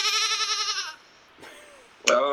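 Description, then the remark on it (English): A goat bleats loudly, a long quavering cry lasting about a second. After a short pause, a second bleat begins abruptly near the end. “A cheating goat.”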